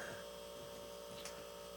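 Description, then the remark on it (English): A steady electrical hum from a refrigerator that is about to be switched off drones on without change, low and continuous, with a faint brief click or rustle partway through and no voices. “Oh, I forgot to turn off my fridge.”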